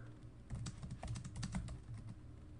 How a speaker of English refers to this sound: I'm looking this up. If you hear typing, it's because I'm typing.